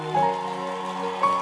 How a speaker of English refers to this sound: Clapping. It's our way of expressing our excitement to the Lord.